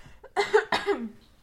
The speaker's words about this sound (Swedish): Jag måste hosta.